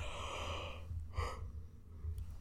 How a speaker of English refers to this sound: Yawn. I just woke up.